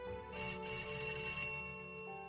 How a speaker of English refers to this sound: When he arrived, he knocked on both doors and rang the doorbell.